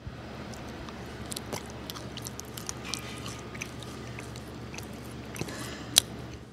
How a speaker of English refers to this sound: That chewing is obviously going to combine saliva into the bread. Saliva is body temperature, so it's warmer than room temperature. So as you're warming the bread, it's going to become more flavorful.